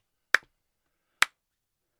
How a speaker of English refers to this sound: Definitely deserve that clap.